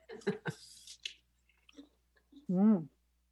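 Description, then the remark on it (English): A few sharp, crisp crunches of biting into a firm Granny Smith apple, followed by quieter chewing and a brief hummed 'mm' from a voice. “So shall we crunch? Yeah, let's crunch.”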